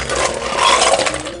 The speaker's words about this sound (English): And I'm just gonna fill my glass up with ice.